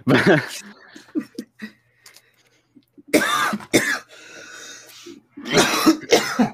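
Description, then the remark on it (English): A wet, phlegmy cough erupts in a few harsh bursts with throat clearing, followed by mumbled voices and a short laugh. “Yeah, everyone coughs. It's kind of our thing. Yeah, but that was like a real gross one.”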